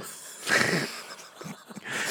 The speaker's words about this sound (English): So don't fucking yawn again. I can't help it. I was up early.